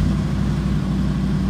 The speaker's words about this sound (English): Just one second. That's my son starting his car.